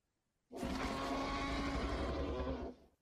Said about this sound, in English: Do they deserve a T-Rex applause or air horns? I would say T-Rex sounds like he's retired.